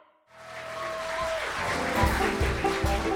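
A dog barks three or four times in a quick, evenly spaced series, loud, following a brief sustained tone and a swell of noise.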